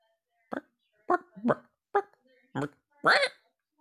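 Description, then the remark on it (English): A person's voice imitates a chicken with six short, clucking bursts at an uneven pace, the last one longer and higher-pitched, like a rising squawk. “Let's pick the bird first and then try to make the noise. Let's not just go for general bird. All right. Okay, let's go chicken.”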